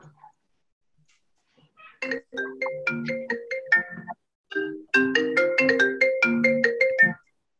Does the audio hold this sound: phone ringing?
yes